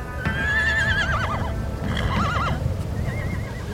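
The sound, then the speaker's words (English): Several horses whinny in quick succession, their high, quavering neighs rising and falling, while a steady low rumble of shuffling and stamping hooves fills the background as the horses spin around, waiting to head into a buffalo herd. No one speaks. “We're just sitting here waiting and the horses are spinning around.”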